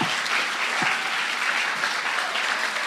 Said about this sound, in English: Can you stand to your feet? Can we just give a round of applause for those working with our young people and our students? Come on.